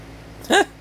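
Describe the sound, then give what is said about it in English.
An Alexa smart speaker plays a single short, squeaky fart sound effect, a quick rising-then-falling blurt lasting a fraction of a second, heard clearly on its own against a quiet background with no talking. “Just the other week, my daughters discovered the joy of telling Alexa to fart.”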